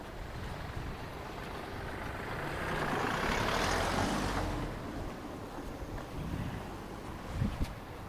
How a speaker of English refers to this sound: Hopefully the last of the cars to pass us on this journey has made its way off into the distance.